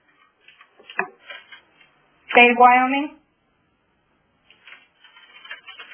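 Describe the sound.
Keyboard typing picked up by someone's open microphone on a conference call comes through as faint, quick irregular clicks scattered around a person's speech, with a short pause in the tapping partway through.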